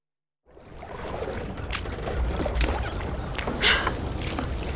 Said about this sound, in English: I feel like we're rowing and rowing and not getting anywhere. I know. Whatever caused that rumbling seems to have agitated the water.